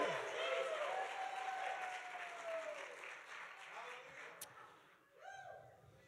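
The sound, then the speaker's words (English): A crowd claps and shouts to God at a preacher's call, in a dense, sustained wash of applause, with loud whoops and cheering voices rising over it, then tapering off near the end as a voice calls out. “Come on, shout and clap to God.”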